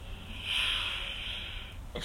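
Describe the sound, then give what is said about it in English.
A single sneeze with a drawn-out, hissy burst of breath, fairly loud, followed by a brief rustle at the end. No one speaks. “bless you. Bless you.”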